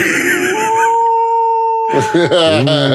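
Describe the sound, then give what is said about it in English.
A wolf in a video game lets out a long, steady, drawn-out howl that holds one pitch for over a second, followed by voices talking loudly near the end. “Oh, the wolves are coming out in 10 minutes.”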